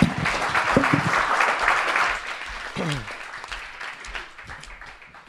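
An audience breaks into a round of applause, dense steady clapping that stays loud for several seconds before gradually thinning out, with a few voices calling out over it.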